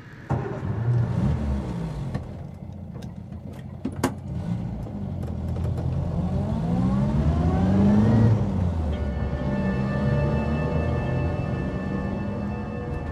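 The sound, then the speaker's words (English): A car engine drones steadily from inside the vehicle as it winds over Snake Pass in cold, showery weather, its pitch rising and falling as it accelerates, shifts gears and slows through a series of bends, with a few faint clicks and rattles. “car wound around the crazy bends on the way over Snake Pass.”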